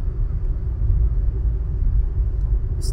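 A steady, loud low-frequency road rumble fills the inside of a car moving on the 405, constant throughout with no talking, and a brief faint high click near the end.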